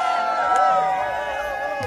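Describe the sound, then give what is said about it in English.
A TV studio audience cheers loudly all at once, a dense wash of overlapping voices and whoops with bright, wavering high pitches that holds steady for a couple of seconds. “you ready, to this crowd, and you know, and they all just cheered loudly, and then they held it too long, so the crowd, it's the most unnatural cheer.”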